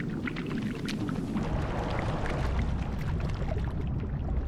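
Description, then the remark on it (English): An old-fashioned orange juicer is pushed down through water to make the sound of little baby Dory's up-and-down movements, producing a steady churn of gurgling and sloshing as water escapes through its small holes, continuous for several seconds with no voices. “one of those old-fashioned juicers that you just put on top of an orange and push down.”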